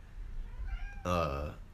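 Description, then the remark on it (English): A cat lets out a single loud, drawn-out meow, rising then falling in pitch, preceded by a fainter, thinner cry and a low background rumble. “And even when I'm smoking on the vapes, shut up, cat.”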